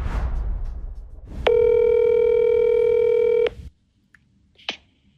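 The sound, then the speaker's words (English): A single steady electronic phone ring tone lasting about two seconds over low line hiss, followed by silence and then a faint click as the called man picks up the phone. “I wanted to talk to Josh and actually reached out to him. And he picked up the phone.”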